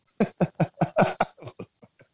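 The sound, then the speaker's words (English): A rapid fit of about ten harsh, hacking coughs, fairly loud at first, then trailing off into fainter, weaker coughs, with no talking. “So I missed the mute on the cough and then muted myself after.”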